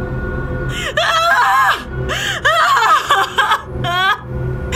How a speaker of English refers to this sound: I swore the house rattled with her scream.